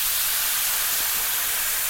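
A steady sizzle as leftover wine is poured into a hot frying pan of cheese and zucchini, a bright hissing spatter that holds evenly for about two seconds with no voices.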